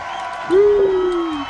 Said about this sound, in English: Yeah, the crowd's going wild.